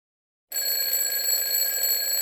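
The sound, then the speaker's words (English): An alarm clock rings out abruptly in the morning after a moment of silence, a steady, piercing electronic tone with bright high harmonics that holds at constant loudness, insistent, with no voices. “The sound of the alarm clock and the light from the morning sun became my new reality.”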